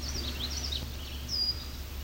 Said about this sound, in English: That eep, one of their calls, is a male red-winged blackbird.